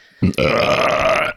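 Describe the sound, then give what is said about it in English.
A single loud, drawn-out burp that opens with a low gurgling rumble, then holds a croaky, buzzing tone for about a second before cutting off. No talking. “Sometimes you just got better out than in.”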